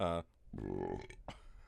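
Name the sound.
burp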